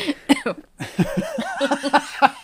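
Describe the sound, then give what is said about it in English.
A yawn given voice: a run of short, breathy vocal bursts that rise into a squeaky, wavering whine and then break off. There is no talking. “Oh, no, she's yawning. Yawn number one.”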